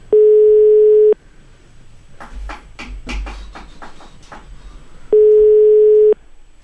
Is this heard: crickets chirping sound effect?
no